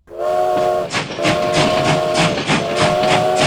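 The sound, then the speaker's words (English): A steam train whistle sounds in three loud, sustained blasts with brief gaps, over the rhythmic chuffing and hiss of the engine. “And when you think about travel in Texas, you have got to start with trains.”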